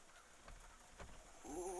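A crow outside the Litmit headquarters gives a single harsh, raspy caw near the end. It is fairly loud, preceded by a couple of faint thumps against quiet background noise.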